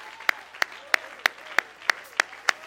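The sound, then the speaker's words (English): A standing audience claps hands together to the Lord in a steady, even rhythm, about three sharp claps per second, with a faint sustained tone underneath and no voices on top. “I need some more to stand to your feet, and let's clap our hands again and shout out to the Lord.”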